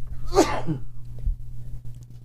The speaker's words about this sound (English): Bless you. There's one sneeze.